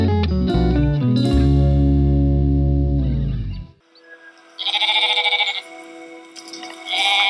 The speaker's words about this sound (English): And that's what it sounded like when Jenna Lewinsky's famous flock of Jacob's sheep arrived in Israel from Canada about 4.5 years ago on a series of Air Canada flights.